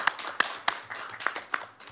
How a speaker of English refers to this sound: I would like to thank the members of the public that were here tonight, and I think a round of applause for our public speakers is appropriate.